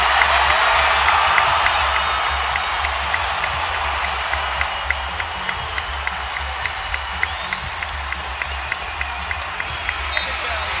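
A large arena crowd at Rocket Mortgage Fieldhouse roars and applauds continuously for Donovan Mitchell as the Cavs run out the clock at the end of a basketball game, a dense, loud wash of cheering and clapping with scattered shouts and whoops throughout, steady and enveloping.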